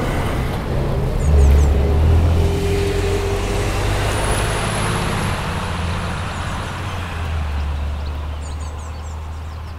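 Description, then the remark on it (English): A truck rumbles along a road in the distance in Powys, Wales, its low engine drone swelling and then slowly fading as it passes through an otherwise quiet outdoor setting. “In the distance, a car making its way through Powys, a truck.”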